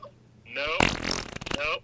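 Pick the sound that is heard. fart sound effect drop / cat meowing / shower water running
fart sound effect drop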